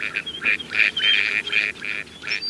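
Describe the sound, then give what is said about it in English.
A dabbling duck on a pond quacks in a rapid, uneven series of six or seven nasal calls, fairly loud, with no voices and only faint background noise between calls. “As a duck swims slowly across a pond, it skims the water with its broad bill slightly open.”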